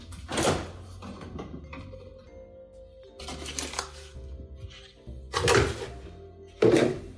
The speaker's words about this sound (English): And I will grab my dairy out of the fridge.